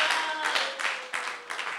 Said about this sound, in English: Why don't you take your seat with a big clap offering to Jesus.